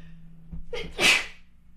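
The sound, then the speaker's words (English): A single sharp sneeze bursts out after a short indrawn breath, loud and hissy, with a faint low hum underneath. “I'm going to sneeze.”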